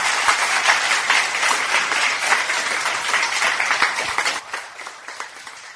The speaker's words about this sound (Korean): 박수를 한번 치면 좋을 것 같아요.